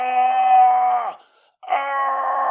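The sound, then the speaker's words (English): A young Black man in intense pain from intussusception of the bowels, in O'Neill's Alley on June 3rd, 1885, cries out in two long, loud, strained wails, the first lasting about a second before breaking off, then a short silence and a second anguished groan. “He's just screaming.”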